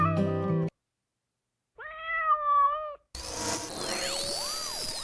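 A single drawn-out cat meow sounds clearly after a brief tonal burst and a pause, then gives way to a noisy wash of warbling, sweeping electronic effects.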